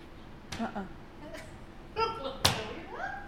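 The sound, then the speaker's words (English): A door creaks open with a couple of soft knocks, then bangs shut with one sharp slam, followed by a brief creak. Faint voices murmur in the background. “Open the door, see if there's anything in there.”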